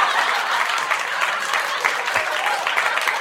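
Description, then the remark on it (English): An applause sound effect: a steady burst of dense overlapping claps at an even, fairly loud level throughout the few seconds, with no voices standing out. “You don't have applause? I thought I've heard applause.”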